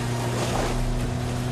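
A motorboat engine drones steadily, its low hum layered over a constant wash of rushing water and wind, with no voices.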